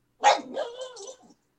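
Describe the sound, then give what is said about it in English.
A single drawn-out, yowling dog bark rises and wavers for about a second, fairly loud, with an excited, playful tone and no other sounds around it; the dog wants to play, bowing and running around in circles as it barks. “She's wanting to play, so she's giving me the bow and running around in circles and starting to bark at me.”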